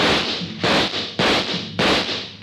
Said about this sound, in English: He took a full volley of shots from 3 police pistols square in the chest.